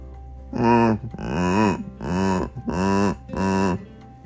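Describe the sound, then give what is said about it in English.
A dinosaur roar: five loud, deep, growling bellows in quick succession, each about half a second long with short pauses between, rich and rumbling in tone. “Those are dinosaurs!”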